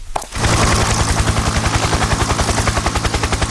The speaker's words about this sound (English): What's that? It's a helicopter! Oh, helicopter.